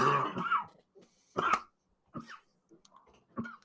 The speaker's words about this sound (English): Here, we'll take him off screen for a few seconds while he composes himself, dealing with a nasty cough from the sickness that took him out of last week's show.